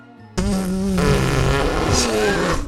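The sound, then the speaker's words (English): A loud mouth-made fart noise, a buzzy, wobbling raspberry made by blowing through lips clamped with fingers and pulled apart to the side, starting abruptly and sustained for about two seconds with fluttering pitch. “If you put your lips together and then you put and then you clamp your fingers over your lips and then you start blowing and then you pull your lips apart, kind of not upward but to the side, it actually makes kind of a cool farting sound like this.”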